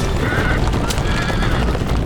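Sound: horse neighing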